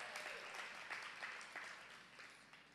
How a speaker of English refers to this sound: Y'all please give a round of applause for my wife, children, or kids.